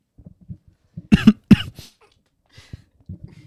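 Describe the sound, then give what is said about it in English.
A man coughs sharply two or three times in close succession, loud, followed by quieter throat noises and faint mumbling. “You know, this fucking just coughing into his fucking.”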